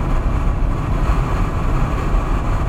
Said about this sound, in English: If you guys can hear that window noise, it's my apologies, but I don't apologize, remember? It's annoying. Why does it always gotta be windy here?